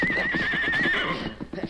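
animal, horse whinnying

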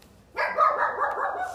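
animal, dog barking

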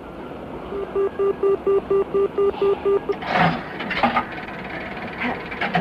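vehicle, train riding on rails

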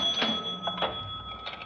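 machine, cash register being opened

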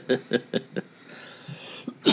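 human body sound, coughing and throat clearing

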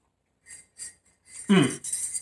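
food or drink, taking a sip

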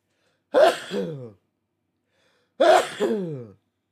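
human body sound, sneezing

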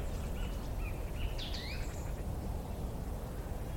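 bird, song thrush singing

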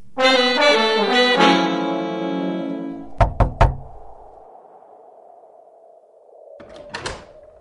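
impact, knocking on a door

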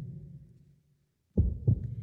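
sound effect, muffled heartbeat

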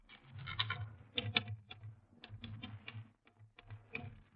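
household object, typing on a typewriter

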